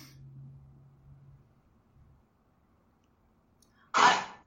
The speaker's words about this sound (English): Oh my God, is he all right? It's just a cough.